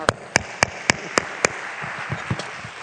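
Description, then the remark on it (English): Six crisp, sharp claps in a quick, steady rhythm, struck together like a group clapping in unison, followed by a few softer, scattered claps trailing off. No voices are heard. “Maybe we should have all clapped. I'm sorry. Let's all clap.”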